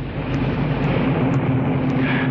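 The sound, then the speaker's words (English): A car engine rumbles steadily with a low droning hum and broad road noise as the car approaches and comes into a garage, holding an even loudness throughout with no voices present. “He was halfway down when he heard the car approach.”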